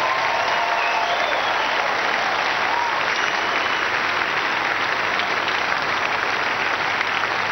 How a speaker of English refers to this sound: Good morning, church. Shall we put our hands together and clap for the Lord again?